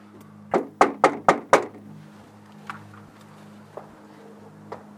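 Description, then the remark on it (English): Five quick, firm knocks on a house's wooden front door, reached by walking up the porch, in a steady rhythm, followed by a few faint, scattered taps over a low background hum. “Right next to the door I was knocking on, there was another door.”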